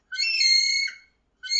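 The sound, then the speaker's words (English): A person imitates a kiwi bird's call with a shrill, piercing whistle: one sustained note lasting most of a second, a short pause, then a second cry begins, loud. “Kiwi call goes like...”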